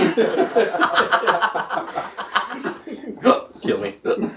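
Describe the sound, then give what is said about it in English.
A voice imitates hiccups with a run of quick, rhythmic vocal gulps, then a few spaced-out hic sounds, mixed with chuckling. “In his new self-produced album, … raps over the sounds of pretending to have the hiccups.”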